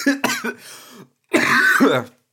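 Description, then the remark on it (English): A few quick coughs in a row from a person with hay fever, then after a brief pause a longer, rough and raspy throat clearing. Both sounds are loud and isolated, with no talking. “And every time I laugh now, I just seem to explode with either a sneeze or a cough.”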